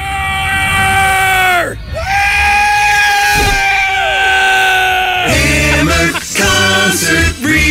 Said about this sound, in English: Can you give me a little scream right here?